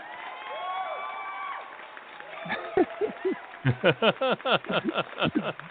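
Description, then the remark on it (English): Crowd applause and cheering given as a clap-out send-off for a departing guest: a rising murmur of voices and whoops, then a run of rhythmic clapping bursts with excited shouts, steady and fairly loud to the end. “Here's your clap out as everybody deserves.”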